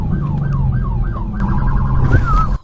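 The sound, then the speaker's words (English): A police siren whoops in a fast, repeating yelp over a heavy engine rumble during a police car chase in New York City, loud, with a rising burst of traffic noise near the end before it cuts off. “This is a New York City car chase.”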